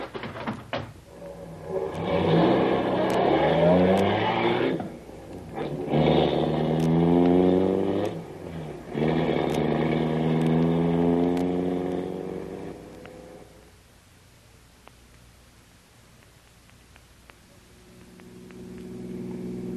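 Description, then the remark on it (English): A car engine revs up loudly and accelerates through about three gear changes as it goes after another car, its pitch climbing each time, then drops away to a quieter, steady low hum. “Quick, get into Grogan's car. We're going after him.”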